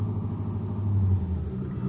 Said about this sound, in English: pull into the driveway of the white frame house on Maple Street and prepare to return Father's treasured car to the shelter of the garage.